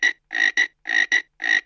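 A frog croaks loudly in a quick rhythmic series, each long raspy ribbit followed by a shorter one, repeating three times with brief pauses between.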